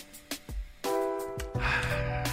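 Several quick sniffs come in short bursts over a steady tonal background hum as someone smells their clothes to check whether they need washing.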